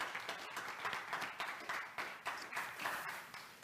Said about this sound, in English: If this has been helpful, give God a hand and clap of praise tonight.